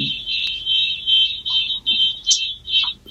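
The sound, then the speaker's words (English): A car alarm outside an apartment blares a shrill, high-pitched tone in a steady series of rapid pulses, fairly loud and continuous, with no one talking. “Sorry, there is a car alarm outside my apartment right now.”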